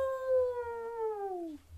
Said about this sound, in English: A big, hungry wolf. Oh no! Can you howl like a wolf? Ow! Ow!